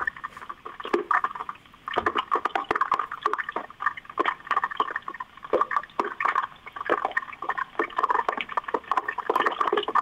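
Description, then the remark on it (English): Hot oil, already bubbling near the top, bubbles and crackles steadily in a deep fryer, a dense patter of tiny pops and sizzles that keeps up throughout with no voices. “I'm not dropping it right in because it's already bubbling near the top.”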